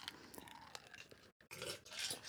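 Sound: ice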